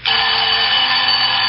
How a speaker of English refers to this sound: Usually I have to wake and turn off the alarm in the morning.